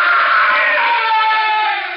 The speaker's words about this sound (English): He began to scream. But then, after a while, he was silent.